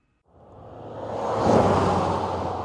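A Predator drone flying over the New Mexico desert: its engine whirs like a lawnmower, a steady low droning hum with a broad rushing layer that swells in loudness and then holds. No one speaks.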